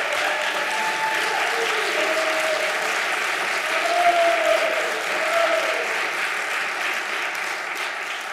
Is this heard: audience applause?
yes